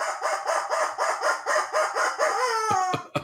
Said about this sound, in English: The rubber chicken says...